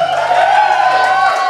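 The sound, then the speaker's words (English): A live comedy audience cheers and whoops loudly as comedian Turner Sparks is welcomed, a dense, sustained roar with no clear individual voices standing out. “Yeah, that is live comedy energy.”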